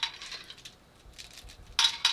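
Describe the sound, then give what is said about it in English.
Light, papery freeze-dried cranberries being handled, giving off dry crinkly rattles in short bursts, with a quieter stretch before two louder, crisper crackles at the end. No talking. “They're totally paper light. Like, I wouldn't even know I'm holding anything right now. But listen to the texture.”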